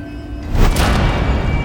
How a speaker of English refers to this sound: Did one of you close the door?